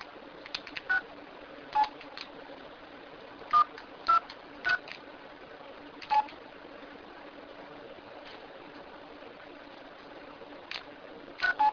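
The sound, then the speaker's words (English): Short electronic phone keypad beeps sound at irregular intervals while a phone is being closed, about ten brief tones, some in quick pairs, over a steady low background hiss, with no one speaking. “I'm just closing my phone here. It just doesn't want to close.”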